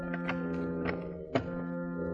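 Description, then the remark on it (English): A door, the servants' entrance to Bolton's penthouse, being tried and opened: a few light clicks and rattles, then a firmer thunk as it gives, all fairly quiet over a steady low hum. “The door's open.”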